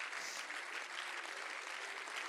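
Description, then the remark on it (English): An audience clapping their hands to the Lord all over the building, a dense, steady wash of many overlapping claps that holds at an even, fairly loud level throughout, with no voices standing out. “Can you clap your hands to the Lord all over this building?”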